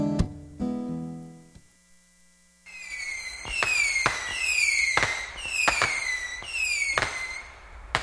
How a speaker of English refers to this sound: Okay, we just set off some fireworks in the studio here, and that means it's time for Pandora's Lunchbox. There's some burn marks on the wall, but we'll take care of that.